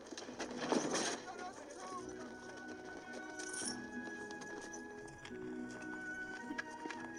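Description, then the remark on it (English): Horses' hooves clip-clop in a steady, uneven patter amid a busy outdoor bustle, with a faint whinny and indistinct voices in the background. “Prepare the horses. We will leave at once.”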